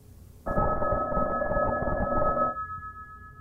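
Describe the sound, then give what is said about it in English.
A telephone ringing next door: one sustained electronic ring with a steady high tone and a buzzy rattle beneath it, lasting about two seconds before cutting off, with no talk. “10 rings. I get up.”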